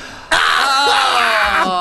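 A man breathes heavily in one long, loud, raspy exhale with a strained, groaning edge, close up and lasting over a second before cutting off.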